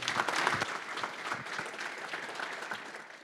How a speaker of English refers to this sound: We give him another big round of applause.